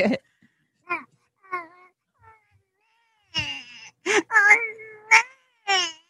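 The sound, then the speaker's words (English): A person imitates a crying baby with a string of high, wavering wails, starting as short, quieter whimpers and building into louder, drawn-out sobbing cries with brief breaks between them. “how's my baby cry? All right. Let's hear it.”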